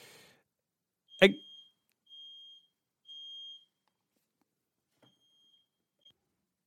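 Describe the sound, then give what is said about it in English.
A home fire alarm goes off with no fire, sounding a few high, piercing beeps in a steady on-off pattern, preceded by a sharp click or knock and a brief burst of speech at the start. “My fire alarm went off for some reason.”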